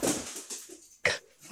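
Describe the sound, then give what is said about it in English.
An excited female dog, Ziggy (Pod Dog), with her soccer ball, her favorite toy, makes breathy huffs and snuffles in quick bursts, then lets out one sharper, louder yip before settling back to soft panting, with no talking. “She's back and she's very excited.”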